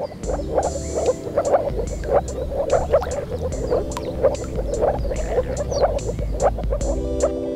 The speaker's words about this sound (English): In addition to this colorful display, males also attract mates with their call. The call of the moor frog is said to resemble air escaping from a submerged empty bottle, which is extremely specific, but actually pretty accurate.